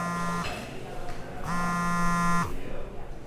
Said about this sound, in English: Okay, so you're in the middle of enjoying your lunch, and suddenly you hear that all too familiar buzz in your pocket.